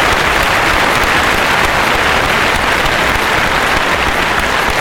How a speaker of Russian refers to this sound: Бурные аплодисменты, переходящие в овации прямо. Только криков не было, и народ не вставал.